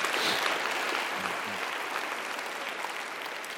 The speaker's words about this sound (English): We also had baseball and softball that played on Sunday, and both of them split, and they're doing a great job, so we can give a round of applause for our baseball and softball team.